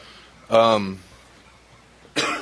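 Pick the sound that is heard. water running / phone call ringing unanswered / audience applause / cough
cough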